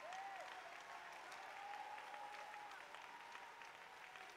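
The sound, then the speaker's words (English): A church audience claps their hands with all their might and shouts together, a dense, steady wash of applause with voices calling out underneath, sustained and loud throughout. “And if you're excited to be a part of that end time outpouring of the Holy Ghost, why don't you put your Bibles down and clap your hands with all of your might and shout.”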